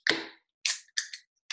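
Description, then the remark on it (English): A beer can cracks open with a sharp, bright pop, followed by a few short bursts of fizzing hiss in an uneven rhythm. No one speaks. “And this is a very delicious beer, and I cannot wait to crack it with you, albeit from the other side of the country,”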